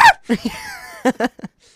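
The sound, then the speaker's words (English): A person briefly imitates a scream with a sharp, high-pitched yelp, followed by several short bursts of breathy laughter and a faint trailing voice. “Can you replicate the scream that you did earlier?”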